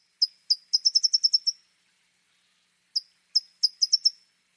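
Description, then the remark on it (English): A towhee sings two clear, high phrases, each opening with one or two sharp notes followed by a quick buzzy trill, separated by a short pause, with no other sounds. “One of the many, many lovable qualities of towhees is they are a relatively rare bird that mates for life.”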